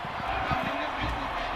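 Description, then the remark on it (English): A football stadium crowd at Boise State's blue turf in Boise cheers after a kickoff in a steady, dense roar of many voices, holding at an even loudness throughout the short stretch without any sharp peaks. “If our listeners heard the crowd in the background, that definitely was for cheering, yeah.”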